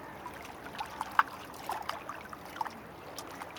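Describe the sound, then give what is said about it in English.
Gentle water lapping and trickling at the water's edge near high tide, soft irregular splashes and small clicks over a steady low wash, fairly quiet, with no voices. “We've come around the corner, down to the water's edge. It's nearly high tide.”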